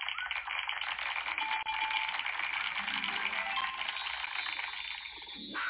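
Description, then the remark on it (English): A mountain lion growls in a harsh, raspy rumble that carries on steadily and loudly for several seconds, then briefly fades near the end. No one speaks. “That's a mountain lion.”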